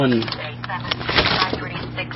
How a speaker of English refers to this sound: You can hear the bacon popping in the microwave.